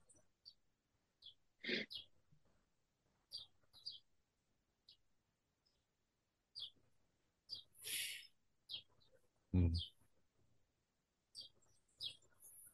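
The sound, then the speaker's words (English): Birds sing outdoors in the trees in the last of the sunlight, in short, scattered chirps and high tweets. The calls are fairly faint, broken by a few louder rustling or thumping bursts and quiet stretches. “I'm just looking at the sun, last of the sun shining on the trees and the birds singing.”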